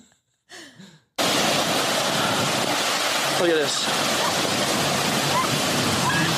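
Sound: waves splashing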